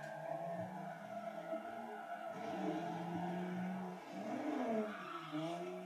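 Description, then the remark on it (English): A car engine revs hard and steadily on a clutch kick drift entry, its pitch rising and dipping as the car drifts, with tires squealing over the loud, continuous roar and no voices. “Clutch kick entry?”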